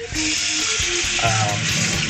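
A drawn-out, wavering sung call from a roasted sweet potato (yakiimo) truck in Japan, its held notes stepping between pitches over a steady hiss of street noise.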